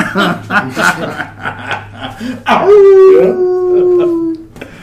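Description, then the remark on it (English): A person imitates a wolf howl, a long, loud, rising-then-steady vocal wail lasting a couple of seconds, preceded by chatter and chuckling from nearby voices. “And you gotta rig the horn so it's a wolf howling.”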